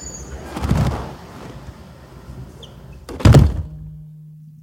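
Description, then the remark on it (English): Heavy-duty reinforced doors of an anechoic chamber swing shut: first a muffled thud, then a few seconds later a louder, solid slam, leaving a low steady hum in near silence. “Okay, so I'm rolling, and you're going to shut the doors and leave me in here for a little while.”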